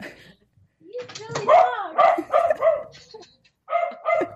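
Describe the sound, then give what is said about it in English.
A male dog barks loudly, a rapid run of several sharp, yappy barks, then a short pause before two more barks, excited because its owner's husband has come home. “My dog is rude. He wants to put some input in as well.”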